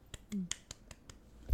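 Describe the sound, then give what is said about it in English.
A handful of slow, evenly spaced sarcastic hand claps, fairly light, with a brief low vocal sound early on and a thump at the very end. “That was a very sarcastic clap.”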